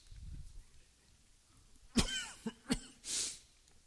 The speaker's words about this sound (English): I call that my COVID cough, but I had it before COVID.